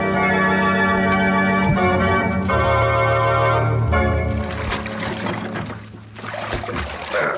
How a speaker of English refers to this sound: Just keep rowing and let me manage this.